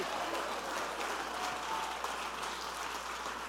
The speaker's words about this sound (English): Come on, if you want revival in your city, jump to your feet, clap your hands and shout, "It's going to happen in my city."